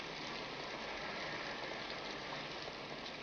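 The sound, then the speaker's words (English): Heavy rain pours down in a steady, unbroken hiss that fills the whole stretch, dense and even throughout, with no voices or other sounds standing out, during the Acme bookstore scene of the film The Big Sleep. “It's raining pretty hard.”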